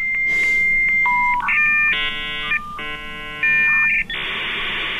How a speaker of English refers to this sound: Remember this sound? For Jenny Green, who lives in North Danville, the anachronistic tones of a dial-up modem are not a reminder of the past. It's how she connects with the digital world today.